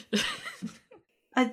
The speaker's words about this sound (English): coughs.